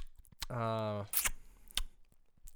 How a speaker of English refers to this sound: hey guys, this is what chewing XL gum sounds like. Yeah.